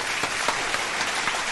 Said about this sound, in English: I got the applause on for you.